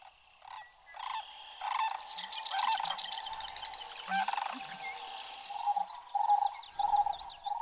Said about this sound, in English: the sandhill cranes you're hearing just there, a common sight here in Wisconsin.